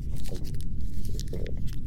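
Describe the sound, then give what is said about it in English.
Moist chewing with soft crinkly crunches as a balled-up piece of paper is mashed between teeth, a steady irregular rhythm of bites over a low rumble, with no talking. “Now chew it down. Swallow.”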